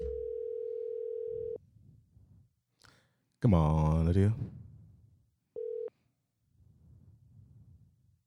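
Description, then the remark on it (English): A steady electronic ringing tone of an outgoing phone call sounds for about a second and a half, pauses while someone mutters and speaks loudly, then starts again briefly before cutting off. “We'll have to call her twice, you know, get a two-time call.”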